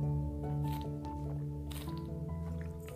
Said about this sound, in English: Sorry if you guys heard that gulp. That's why I was hesitant to taking the sip. But it's important to stay hydrated.